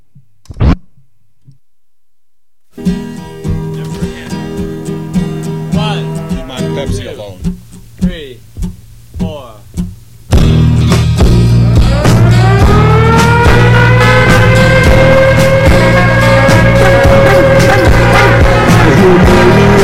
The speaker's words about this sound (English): Okay, hold up. Did you even hear that song? Okay, here it is again.